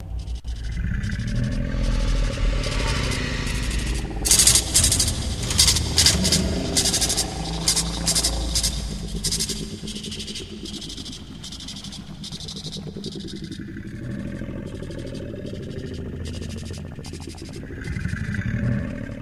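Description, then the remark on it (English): A monster's deep, rumbling roar growls continuously, with loud clattering and scraping bursts crowding the first half, then a steady low growl that swells again near the end. No one speaks. “However, here I want to point out where it was even more prevalent of the sound in 23rd Psalm when the same monster appeared to Echo.”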